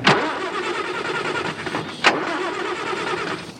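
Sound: car engine starting up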